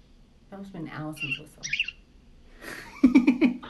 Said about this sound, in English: That's a real bird. Can you speak? And then she's kind of like hissing at you a little bit, like, argh. She's like, argh.